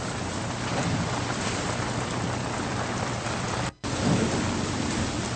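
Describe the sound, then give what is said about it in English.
A heavy, unbroken downpour from a thunderstorm at sea roars from start to end, with a deep stormy rumble underneath and a brief sudden dropout near the end before the rain resumes. No voices are heard. “The storm's easing up, boys, so we just look for the lights on the shore to guide us in.”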